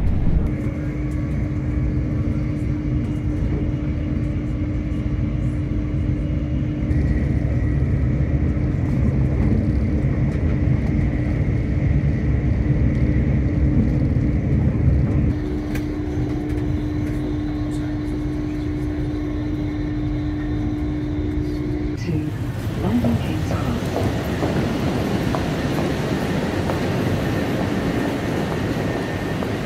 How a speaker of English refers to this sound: we're at 125 now in an Azuma, so wait for it. Oh, that'll do it. Yeah, there we go, that's a nice train, was it passing the other direction?